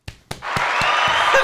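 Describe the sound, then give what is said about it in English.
A few sharp hand claps at a steady, quick pace, then a loud, continuous crackling wash like a burst of applause that fills the rest of the moment. No one speaks. “Why are you clapping?”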